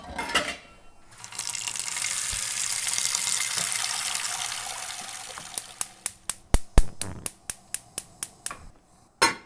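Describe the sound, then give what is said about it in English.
Tap water runs steadily into a cooking pot for several seconds, fairly loud, filling it with water to be boiled for pasta, then stops, followed by a quick series of sharp, evenly spaced clicks. No one speaks. “while we wait for this water to boil”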